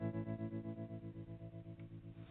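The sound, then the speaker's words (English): A distorted, effects-heavy electric guitar riff from a rock song, pulsing in a steady rapid rhythm with a thick, chorused tone and no vocals. “Check it out, … from …, and we'll be back in a moment.”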